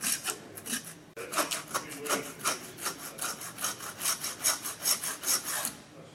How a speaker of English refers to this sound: Connie is sawing into the skull of the lamb.